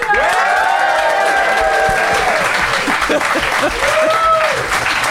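A live audience applauds, dense clapping holding steady and loud for about five seconds, with a few rising whoops and whistles cutting through the noise.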